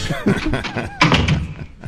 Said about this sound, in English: Michael just played the door opening.